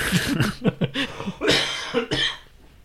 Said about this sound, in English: So I'm hoping that fucking vitamin deficiency bullshit fixes my damn cough, so I don't have to fucking cough anymore or that stupid. Ugh, God, I hate it, man.